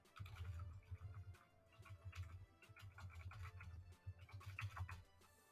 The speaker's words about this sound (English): There's some clicking. Y'all there? Y'all here? I said I heard some clicking. Oh. I heard somebody typing, so I didn't know if somebody was typing in the chat or not. Mm-mm. Yeah, somebody was typing.